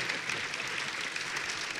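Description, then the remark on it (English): An audience claps steadily throughout, a dense wash of many hands applauding at moderate loudness with no pauses or voices breaking through. “And you can clap.”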